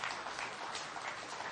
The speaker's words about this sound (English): We've completed that. You ought to give the Lord a hand clap for that.